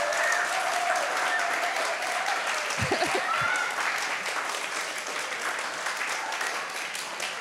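A crowd applauds steadily, a dense wash of many hands clapping at once that holds at an even level throughout, with a few brief low thumps partway through.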